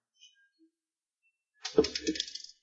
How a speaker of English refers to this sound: Where's my d? Someone roll a d4.